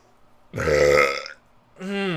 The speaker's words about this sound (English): Yep, I just burped really hard